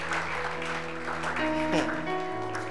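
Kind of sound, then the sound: crowd, audience clapping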